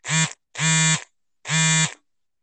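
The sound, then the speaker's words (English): A phone vibrates with notifications in three separate buzzing bursts, each about half a second long, with a low, steady, rattling drone and short silences between them. No one speaks. “Nobody, you got a vibrator going off over there? No, there's just notifications.”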